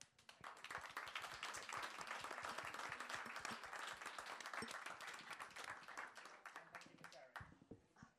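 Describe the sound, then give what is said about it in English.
An audience at a panel discussion on chairs and their designers applauds the three panelists, dense rapid clapping holding steady for several seconds before thinning out toward the end, with faint voices mixed beneath. “So and while you're used to applauding, can I just say,”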